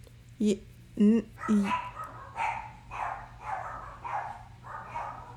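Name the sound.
dogs barking excitedly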